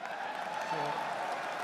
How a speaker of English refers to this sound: So, are people cheering that? Well, like, I hate to... Yes to the biggest racist? You'll learn in a moment that indeed they are.